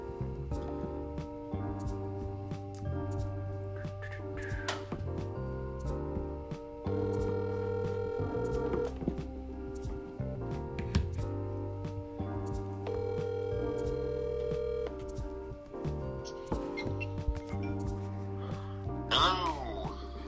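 A phone call being placed to dial in a guest: steady electronic dial and ringing tones shift in pitch across about twenty seconds, loud and continuous, with no one speaking.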